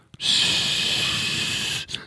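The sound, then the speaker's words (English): A voice makes a steady, breathy hiss for about a second and a half, imitating white noise. It holds an even loudness throughout, then stops abruptly with a short breath after. “But that you know, I'll demonstrate the sound of white noise.”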